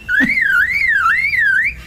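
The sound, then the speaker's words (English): A male lyrebird in a forest mimics a car alarm: a loud, clear electronic tone sweeping up and down in a steady repeating wail for nearly two seconds, alone, with a brief low thump at the start. “And that's a car alarm.”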